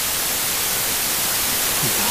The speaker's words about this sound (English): Oh God. Not again. No, I'm hearing the static again! Are you really not hearing this?